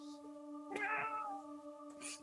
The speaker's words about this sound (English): The cat is still purring furiously. Nuzzling.